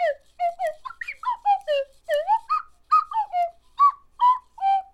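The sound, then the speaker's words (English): A voice imitates a slide whistle in a quick run of short, gliding hoots that bend up and down in pitch, fairly loud, with no other sound behind it. “The slide whistle is interestingly enough more closely related to the trombone than anything else.”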